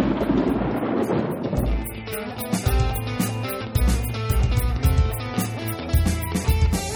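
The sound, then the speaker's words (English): A short, loud bumper jingle opens with a rumbling, thunder-like crash, then settles into a punchy bass beat with bright, busy synth melody. No one speaks. “And one last time before the episode's over, let's take a listen to that new bumper.”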